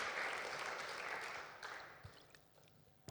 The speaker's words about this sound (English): Let's applaud the Lord Jesus Christ.